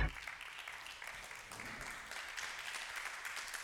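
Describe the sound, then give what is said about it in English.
An audience claps steadily and densely in praise to God for the whole few seconds, a continuous wash of hand claps with some indistinct shouting voices blended into the noise. “Now come on and give God a hand clap and a shout of praise.”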